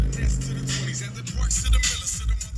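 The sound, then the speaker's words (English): A pickup truck engine runs with a steady, low rumble, heard from inside the cab in the early morning in Watts as the driver lights a cigarillo, adjusts his mirrors and heads to a ranch in Richland Farms to care for horses, with a few light rustles and clicks on top. “And when I jump in his truck, he's right in the middle of it.”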